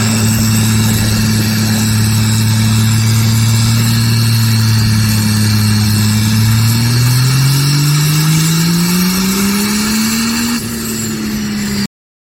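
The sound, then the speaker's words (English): A powerful truck engine of about 1,500 horsepower roars loudly on its very first run, holding a steady deep drone before climbing in pitch as it revs up, then cutting off abruptly. No one speaks. “That was about 1,500 horsepower. He got out of the truck, shut it off, walked around, looked at the tires, said, I didn't feel anything.”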